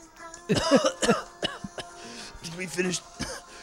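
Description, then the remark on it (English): A voice imitates a man lying in bed coughing and throwing up: a string of harsh coughs and retching noises, several rough bursts in quick succession followed by strained, gagging vocal sounds. “Just feels like a guy like laying in bed, like coughing and just throwing up.”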